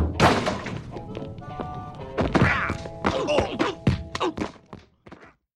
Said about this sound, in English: Only one man can hurt a door like that. And it's Sonny Liston.